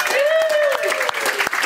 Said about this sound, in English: And we're also thrilled to have Ireland's most decorated rugby player, Rob Kearney. Round of applause for Rob.